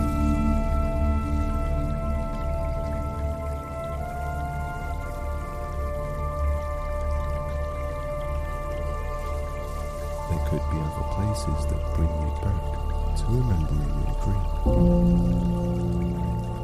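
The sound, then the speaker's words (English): Gentle, steady trickling water runs softly in the background beneath sustained musical tones, while a calm voice speaks slowly over it. “Hear the gentle flow of water as you sit nearby.”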